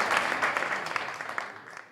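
An audience applauds, a dense wash of many hands clapping with sharp individual claps poking through, holding steady and then thinning slightly toward the end. No one speaks.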